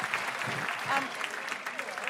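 Steady applause from an audience, a dense wash of many hands clapping at a fairly even level throughout, with faint murmurs of voices mixed in.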